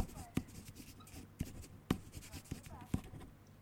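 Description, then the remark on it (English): A pen scratches across paper as someone writes, in quick uneven strokes broken by several sharper taps and scrapes as it moves over the page, fairly quiet overall. “I'm writing it.”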